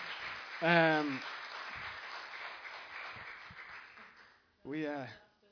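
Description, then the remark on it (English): A crowd applauds steadily for several seconds, the clapping thinning out toward the end, with a couple of loud whoops or shouted cheers rising above it near the start and again at the close. “Can we give them, like, the biggest, like, most honorable round of applause we could ever give?”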